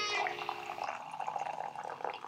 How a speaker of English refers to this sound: Oh, listen to that. That was some coffee being poured right inside a cup.